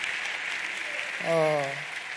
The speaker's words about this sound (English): And let's give our choir a hand clap. Doing a great job.